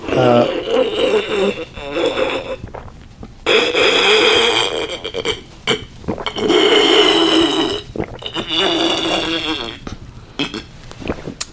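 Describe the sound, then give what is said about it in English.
Obnoxiously loud water sipping during an interview: wet slurping sounds come in several long noisy bursts separated by short pauses, someone noisily sipping water over and over, with gurgling, throaty textures throughout. “I mean, this interview had it all, from the obnoxiously loud water sipping.”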